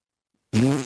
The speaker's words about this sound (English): You know why I have fart problems? Why do you have fart problems? Just let it out.